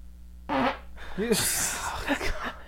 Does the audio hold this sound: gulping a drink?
no